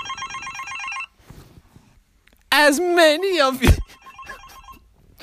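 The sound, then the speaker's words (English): A mobile phone's electronic ringtone trills for about a second, pauses, and a loud voice breaks in before the ringing returns more faintly underneath; the call goes unanswered. “I'm not going to answer my phone, you'll see.”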